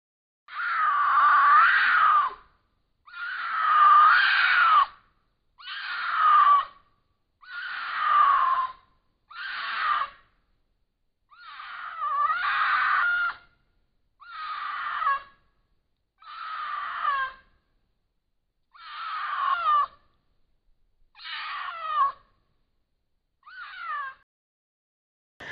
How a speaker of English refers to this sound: And it's a YouTube clip. So I click on it. It's a trail cam of wildcat or mountain lion. It's a mountain lion mating call, or, you know, but it sounds really crazy. You know how cats do, but amplified much larger.